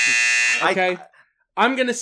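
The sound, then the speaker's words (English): A loud, harsh electronic buzzer blares steadily for about half a second, then cuts off as a man starts talking, with a short pause before speech resumes. “Let's buzz me out here.”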